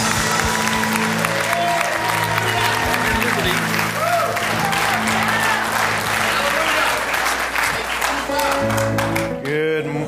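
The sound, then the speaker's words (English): A large church audience claps loudly and continuously for about ten seconds to welcome a preacher, a dense wash of hand clapping with sustained low musical tones beneath it, stopping abruptly near the end. “please put your best hand clap together for God's servant”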